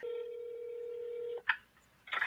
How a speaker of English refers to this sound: So let me get him on the phone. This is going to be a phone interview. So let me dial him in and see if we can get this show on the road.